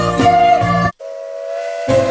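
A loud train whistle blows twice with a sharp pause between blasts, the second a cleaner, steadier tone before the full harmonic blast returns at the end.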